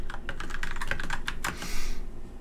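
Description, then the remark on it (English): Two dice, one red and one purple, are rolled for a game check: a rapid run of small hard clicks and clatters as they tumble, ending in a brief hissy rattle as they settle. Moderately loud, with no talking. “Rolling dice.”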